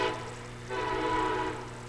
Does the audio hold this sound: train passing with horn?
yes